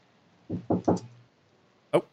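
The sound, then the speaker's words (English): Three quick knocks on a door in a rapid cluster, followed by a pause and then a single, sharper knock, all clear. “Someone knock on the door.”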